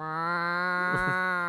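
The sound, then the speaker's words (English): A person imitates the yowl of Tinker, an old cat that had turned senile: one loud, drawn-out nasal wail held steady for over a second, with a slight wobble near the end. “You know what Tinker sounded like?”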